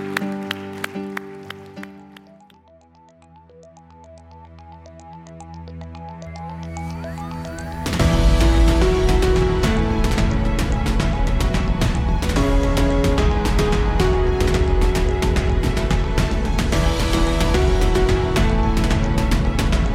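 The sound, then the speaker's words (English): Crowd applause at a church service after a prayer, with dense, steady clapping that swells sharply partway through and stays loud, mixed with sustained musical tones underneath. “Can we give this one individual that raised their hand a huge round of applause?”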